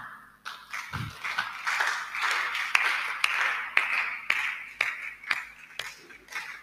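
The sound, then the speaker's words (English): An audience at a prayer service claps hands together, a dense wash of many claps with sharper individual smacks standing out in a steady rhythm. Nobody speaks. “Those who are clapping, they have a portion, the 11th hour miracle.”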